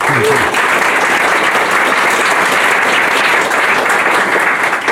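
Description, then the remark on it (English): A crowd at a Powerhouse and GTM 'What It Takes' event claps steadily for Nextracker founder and CEO Dan Shugar, a dense, even wash of applause that stays loud for the whole stretch without fading. “So please join me in a round of applause for Dan.”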